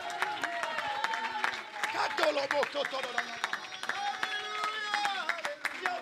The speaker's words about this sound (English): Somebody clap your hands and shout unto God with the voice of triumph. Somebody shout hallelujah.